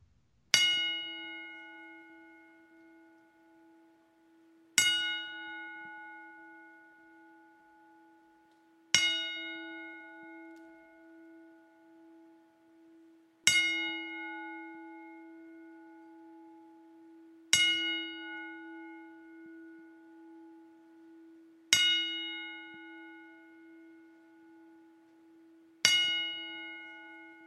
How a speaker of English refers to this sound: So what we're going to do here is something that we've never had to do on Wrestling with a Bear since our start. And that is a 10-bell salute for Jerome New Jack Young.